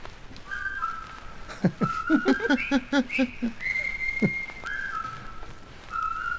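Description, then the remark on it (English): A whistled march tune played from a flexi-disc postcard carries a bright, steady melody of held and quick notes, with a couple of dull low thumps beneath it. It sounds slightly thin, like an old recording. “So it turns out that rifle is a whistle.”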